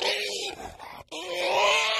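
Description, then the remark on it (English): A person vocalizes a strained, nasal, pig-like grunting noise for about two seconds, imitating the weird noise of an enormous, hormone-fed pig. It is loud, with a brief break in the middle before the sound resumes. “There was another foreign pig that wandered across from the neighbouring farm. Yeah, it's on steroids. It makes a bit of a weird noise.”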